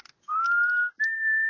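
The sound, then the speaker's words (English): A person whistles a short two-note phrase: a long tone that glides slightly upward, a brief pause, then a higher steady note held clearly, with no talking. “And if you know how to whistle.”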